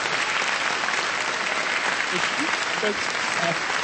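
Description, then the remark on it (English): Steady, dense applause fills the whole few seconds, a continuous wash of many hands clapping at even loudness, with faint voices just audible beneath it near the end. “Where's my applause?”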